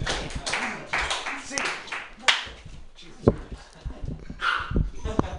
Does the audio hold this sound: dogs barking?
yes